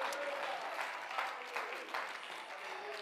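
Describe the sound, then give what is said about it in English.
An audience at an evening church service claps their hands and shouts hallelujah, a steady, dense wash of applause with faint voices calling out beneath the clapping throughout. “Come on, somebody clap your hands and shout hallelujah tonight.”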